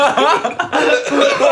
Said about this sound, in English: Yeah, it makes you cough. Yeah, that's really why? Bad. Did you turn it up? It's no, harsh. It's fucking... I hit it. Hit it slow, cough, man. It's fucking harsh.